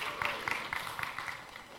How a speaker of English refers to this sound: Yes, come on, that's worth a round of applause, isn't it?